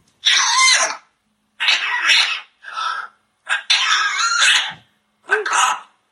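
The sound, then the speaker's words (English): A parrot imitates a person with a cold coughing and sneezing in a series of five or six short, raspy bursts separated by brief pauses, loud, with no talking. “There's a few where it can mimic the sound of a person having a cold. Like, bird coughing and sneezing compilation.”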